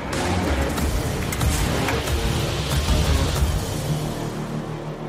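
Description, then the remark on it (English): A pre-production pickup truck drives hard on a test run, its engine roaring with a steady, heavy rumble and rough road noise that stays loud throughout, with no talking. “We just inspired this pre-production truck you see behind me. Let's go see what it'll do. Gonna do the same run.”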